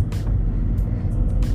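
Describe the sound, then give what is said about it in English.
Steady low rumble of a car driving through busy street traffic with people walking and cars everywhere, engine and road noise filling the background and brief airy hisses from passing vehicles or brakes. “There's people walking, cars everywhere. It's strange. Driving is hard work, man.”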